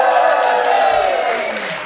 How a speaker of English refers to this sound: And we are live actually at my house, and there's a full room of people from 11 countries. Give yourself a big round of applause.